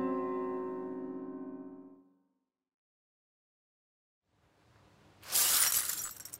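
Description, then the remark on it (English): A sustained humming tone fades into silence, then a mirror leaning against a counter is bumped into and falls to the floor, shattering in a loud, bright crash of breaking glass that rings out briefly. “I smacked into it. It smacked onto the floor and... 7 years bad luck, is it?”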